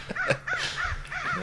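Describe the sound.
A person imitates a crow, letting out a quick series of harsh, nasal caws in close succession, loud, with no other talking.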